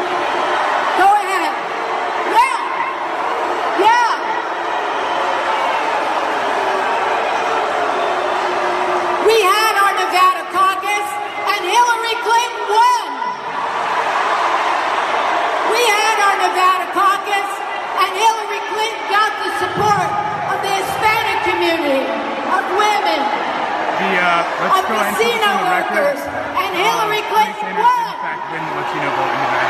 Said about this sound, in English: So keep on booing and boo yourselves out of this election.